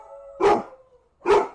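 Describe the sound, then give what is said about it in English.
Dogs howl and bark: a thin, sustained howl runs underneath while two loud barks punch through about a second apart, with no talking. “Are you listening to the other ones howling? My god, they're howling.”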